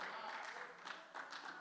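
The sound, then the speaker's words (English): A crowd claps together in a dense, steady wash of applause, soft, with slight swells in intensity and no clear individual claps standing out, during a preacher's sermon. “Now, I would like to say that a lot of times people think if you clap, you're clapping to affirm whatever the preacher's saying.”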